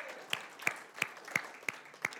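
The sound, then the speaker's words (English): An audience applauds, a steady wash of clapping with sharp, evenly spaced claps standing out about three times a second, with no voices over it. “And that's, yeah, let's give that a round of applause.”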